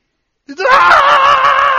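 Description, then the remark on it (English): A voice imitates a terrified shriek, showing how people shrieked when they cried out to the Lord: one loud, sustained high-pitched scream that bursts in after a short silence and holds strong for over a second. “They squealed. They shrieked.”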